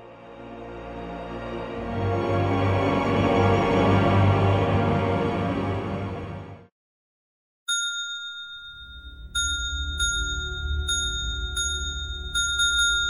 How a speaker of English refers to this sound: Would you stop ringing that bell, sir? And furthermore, we don't have a desk bell.